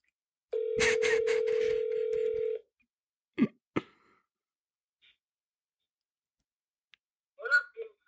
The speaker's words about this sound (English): I was going to say, he typically keeps his phone off. Hold on. Oh, it's ringing. Here we go. I hope he answers.